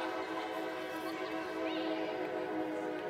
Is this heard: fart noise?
no